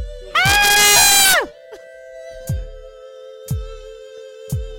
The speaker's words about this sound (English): Should I scream for y'all?